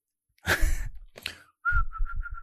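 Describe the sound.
A person imitates a bird: two breathy, rasping squawks, then a high whistled warble that wavers in a quick series of about five pulses. No talking.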